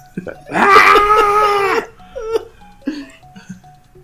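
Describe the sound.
A voice imitates a goat, letting out a loud, sustained goat-like scream lasting over a second, wavering and nasal, followed by a few short, quieter bleating sounds and faint vocal fragments.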